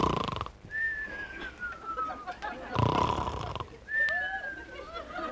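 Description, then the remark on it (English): A man snores in his sleep in rough, rasping breaths, each followed by a thin whistling exhale, with faint sleepy mumbling between the loud snorts, repeating every few seconds. “Every night it's the same thing, snoring and mumbling.”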